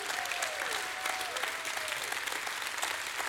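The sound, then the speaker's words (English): An audience claps steadily and loudly throughout, giving God a hand clap, a dense wash of hands with a few voices shouting out praise over the first couple of seconds. “Stand with me, put your hands together, and give God a hand clap and a shout of praise.”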